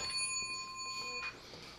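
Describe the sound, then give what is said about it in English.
A phone's electronic ringtone sounds as a steady, bright tone at modest volume, held for about a second before cutting off abruptly. No one speaks. “My bad, phone is off. Anyway, I should have even answered it.”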